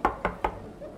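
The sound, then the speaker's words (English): Three firm knocks on the wooden door of the Pullman Club in quick, even succession, fairly loud, with a brief hollow ring after each and quiet afterward. “No one's answering. Knock louder?”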